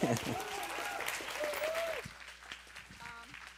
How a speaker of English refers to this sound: Thank you. Have one more round of applause for those